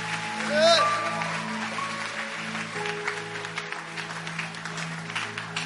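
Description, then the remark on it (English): A church audience claps steadily together as a praise offering to God, in a dense, sustained wash of hand claps, with sustained musical tones and murmuring voices underneath. “I thought clap offering is praise to God.”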